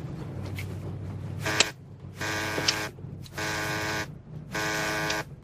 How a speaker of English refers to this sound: Your buzzer's ringing.